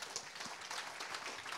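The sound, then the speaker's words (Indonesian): An audience applauding for God, a steady dense patter of many hands clapping together without pause, fairly soft overall, with no voices over it. “Tepuk tangannya fals. Berikan tepuk tangan yang lebih baik bagi Allah kita.”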